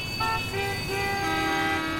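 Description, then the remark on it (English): Busy city street traffic on a crisp fall evening rumbles steadily while car horns toot in overlapping bursts, several held notes at different pitches sounding one after another over the continuous engine noise. “He stands in the glaring neon of a crisp fall evening as rivers of horseless metallic wagons trundle by. A sputtering of life hums from each, creating a constant rumble that echoes from all sides.”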